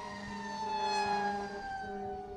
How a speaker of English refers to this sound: I hope everybody's okay. A fire truck just passed by. Yeah, if you didn't catch that.